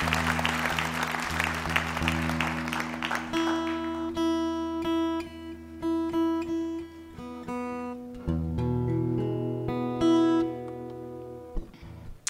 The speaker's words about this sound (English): I really appreciate the one hand clap for Galax, Virginia. Whoever you are, thank you for that. That made me feel at home.